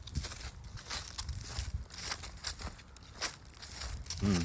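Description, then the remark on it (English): Freshly fallen dry leaves crunch and crackle underfoot in a steady walking rhythm in the evening, each step a bright, crisp burst of rustling. The crunching is fairly faint and there is no talking. “Some leaf crunching.”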